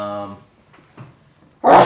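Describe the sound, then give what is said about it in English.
A short voiced sound and a few soft breaths, then one sudden, loud, hissing burst at the end, like a sneeze that cuts off abruptly. “Bless you. Thank you.”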